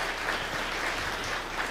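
An audience applauds Murphy Robinson and his General Service team at the request of Mayor Michael B. Hancock, many hands clapping in a dense, steady wash of sound at an even, moderate loudness, with no voices rising above it.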